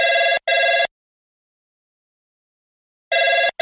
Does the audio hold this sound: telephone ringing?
yes